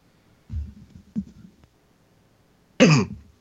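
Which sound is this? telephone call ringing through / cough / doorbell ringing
cough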